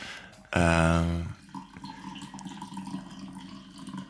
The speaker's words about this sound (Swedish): Det är alltså inte jag som kissar utan jag får som häller upp kaffe.